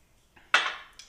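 A sharp glassy clink as a fancy glass is set out for a bourbon tasting, ringing briefly with a bright high tone, followed by a softer second tap, with no talking.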